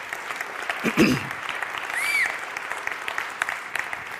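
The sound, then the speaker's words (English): A crowd at a Sunday morning worship service claps steadily for the band, a dense wash of overlapping hand claps with a few brief cheers or whoops rising above it, holding at an even loudness throughout. “So let's give them a round of applause, man.”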